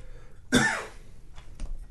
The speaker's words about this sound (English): that was too quick for the cough. Too quick for the cough button. It was a rapid fire.